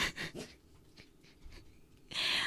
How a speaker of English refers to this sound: Oh, my dog just walked in.